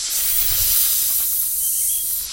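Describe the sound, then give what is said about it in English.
A steady, breathy hiss of a cobra, loud, holding for a couple of seconds with no voices. “The cobra woke up.”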